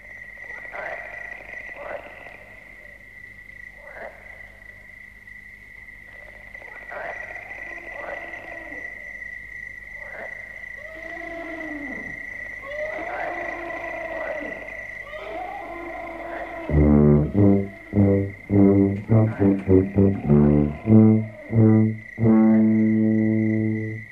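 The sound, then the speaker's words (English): A recorded song plays: a voice sings over a low steady drone with a thin high tone, then loud, rhythmic strummed chords burst in partway through and continue to the end. “Okay, we're going to go on to the next track here,”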